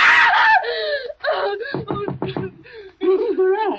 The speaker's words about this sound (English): What on earth is wrong? Why were you screaming?